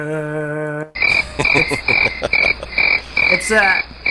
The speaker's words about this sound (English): Play the crickets!